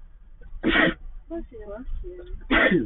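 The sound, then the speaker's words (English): Two sharp, explosive sneezes about two seconds apart, with brief voiced murmurs and throat sounds in between. “Bless you.”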